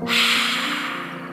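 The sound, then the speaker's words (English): A single forceful, breathy exhale with an open mouth in a lion's breath exercise, a loud rush of hiss that starts abruptly and slowly fades over about a second, with a faint voiced rumble imitating a lion's roar. “Open your mouth really wide as you breathe out and make a lion's roar.”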